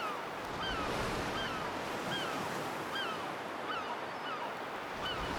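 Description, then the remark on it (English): Rough sea surf of the Pentland Firth, by the lighthouse near Duncansby Stacks, roars steadily beneath gusting coastal wind with light snow blowing, a dense, unbroken wash of crashing waves, with faint high bird calls drifting in and out over the churning water. “stepped out by the lighthouse to get a panoramic view of the Pentland Firth, which was wild and threatening.”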